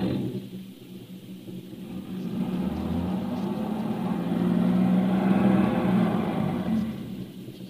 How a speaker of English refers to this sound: Come on, start the car. But I'm telling you the truth. We're stuck in this ditch. You better start the car, mister.